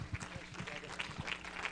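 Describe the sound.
An audience applauds to welcome a guest pastor, a dense, steady wash of many hands clapping with scattered sharper claps and voices mixed in beneath it.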